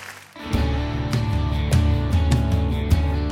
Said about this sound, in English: Y'all receive that this morning? Come on, if you receive it, let's clap our hands.